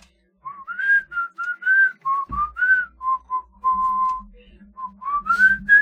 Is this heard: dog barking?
no